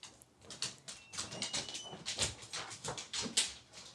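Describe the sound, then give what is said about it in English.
A dog wanting to go outside whimpers and lets out a rapid string of short, yelping barks, fairly quiet, with no one speaking. “Oh, he wants outside. He just barked it.”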